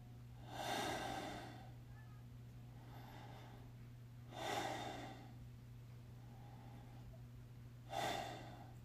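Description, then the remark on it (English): A person takes three slow, deep, heavy breaths, each a loud airy exhale with a softer inhale between, evenly spaced over a faint steady hum. “Now, gently close your eyes and take three deep, heavy breaths.”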